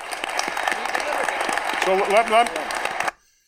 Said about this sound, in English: So you can tell that really got some applause from the gallery.